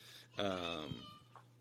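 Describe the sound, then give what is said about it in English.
One of the speaker's kids yells in the background once in a long, loud, high-pitched wail that slides downward and lasts under a second, then stops, leaving a low steady hum. “And to like realize how important it is to give them attention as you hear my kids yelling in the background.”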